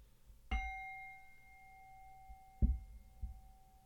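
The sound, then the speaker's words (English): A meditation bell is struck once to begin a guided breathing exercise, its clear tone ringing and slowly fading over several seconds, with a soft knock near the end while the resonance lingers; no one speaks. “I'm going to sound the bell.”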